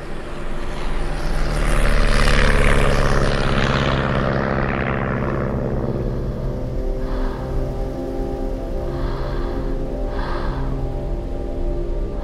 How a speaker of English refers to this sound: And I'm on an airplane. I haven't been on a plane in 4 years.